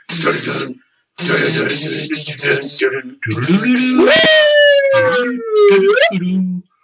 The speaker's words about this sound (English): Is that a guitar or an air horn? That was, dude, that's Whammy Bar.